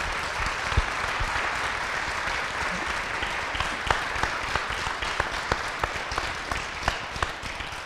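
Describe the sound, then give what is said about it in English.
An audience applauds steadily for several seconds for the city council candidates on stage, a dense wash of many hands clapping with sharper individual claps popping out at a quickening, irregular rhythm. No one speaks over it. “Can we get a huge round of applause for the candidates up here tonight?”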